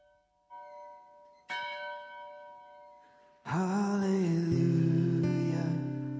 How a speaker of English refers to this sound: Hallelujah, ring the bells.